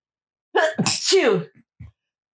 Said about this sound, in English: Bless you. What kind of sneeze is that? I don't know the technical term. It's called don't get it all over everything. You're holding it in. If you got to sneeze, sneeze.